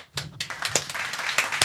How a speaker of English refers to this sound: Where's the clapping, bro? Where's the clapping?